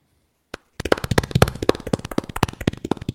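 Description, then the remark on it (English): A single sharp clap, then a brief pause before a light, quick golf clap starts and keeps up steadily for a few seconds, crisp and even, with no voices. “Thanks for the golf clap.”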